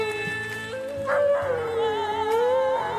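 A dog lets out a long, wavering howl that rises and falls in pitch, sustained for several seconds over music playing in the background.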